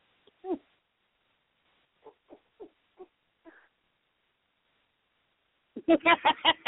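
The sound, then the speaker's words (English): A person imitates a big dog barking: a few soft, short woofs spaced out, then a loud burst of rapid, throaty barks at the end. “Bet you done bark like a dog. A big dog.”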